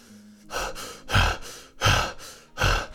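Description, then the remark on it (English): Heavy, ragged breathing up close, with four or five loud gasping breaths in a steady rhythm, each a rough burst of air with no talking. “And Thorfinn's just sort of breathing heavily.”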